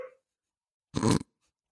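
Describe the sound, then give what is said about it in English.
A dog named Zelda lets out a single short, harsh bark or yelp, loud and standing alone in an otherwise quiet moment, with a brief fading sound just before it. “But I like that Zelda's giving us the dog perspective right now.”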